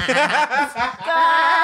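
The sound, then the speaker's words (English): A voice imitates a sheep's bleat: a wavering, nasal, tremulous tone that starts in choppy, chuckle-like bursts and then settles into one longer, steady bleating note. “it's like a sheep when she sings”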